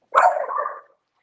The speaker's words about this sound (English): My dog even starts barking like, you liar.